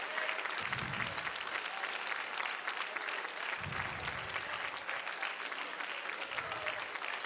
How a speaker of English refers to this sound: If you believe that, just stand to your feet and just, give him praise. Get a hand clap. Hallelujah.